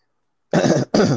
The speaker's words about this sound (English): Sorry, excuse me. Uh-oh. I saw, yeah, you know, it's just a little cough, you know, a little weather change. Not the Rona, I promise.